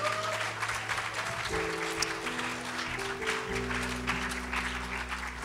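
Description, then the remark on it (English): An audience gives a hand clap of praise in steady, dense applause that keeps up throughout, while sustained organ or keyboard chords hold and shift underneath. “Give him another hand clap of praise tonight for what he's done.”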